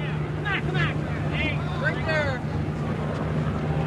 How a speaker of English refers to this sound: 1, 2, 3 Army helicopters flying surveillance over the small section of Washington's complicated highway system.